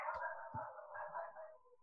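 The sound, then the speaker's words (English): Dogs barking and whining in a continuous, high-pitched stream of yelps that runs for about two seconds without a break. The sound is fairly quiet and no one is talking. “Which clearly my dogs aren't happy with.”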